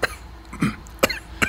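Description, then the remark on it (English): A voice imitates a dry cough, of the kind brought on by blood pressure medication, with a few short, sharp hacking bursts in quick succession, with no talking around them. “I got that dry cough.”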